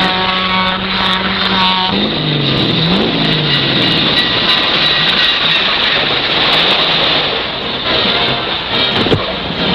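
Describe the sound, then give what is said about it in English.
A train runs on rails with a loud, steady roar of rumbling, rattling noise filling the whole stretch, a droning mechanical tone shifting pitch in the first couple of seconds. “See the nerve-cracking train drag that sometimes kills the winner.”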